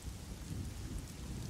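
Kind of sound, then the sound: nature, thunderstorm with rain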